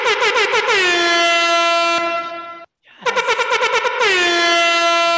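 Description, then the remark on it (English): A loud, blaring air horn blasts in rapid stuttering pulses, then holds a long sustained tone, cuts out briefly, and repeats the same pattern of quick bursts into a steady honk. “It sounds slightly better than my personal air horn effect that I can make with my mouth, but whatever.”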